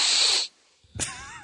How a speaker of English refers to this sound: You got a sniffle? You got a little bit of sniffles there, yeah.